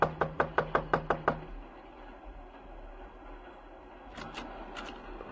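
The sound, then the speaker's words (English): A quick, even run of about eight sharp knocks on a door, then two softer pairs of taps a few seconds later, all over a steady low rumbling background like a moving train. “Just knock on the door.”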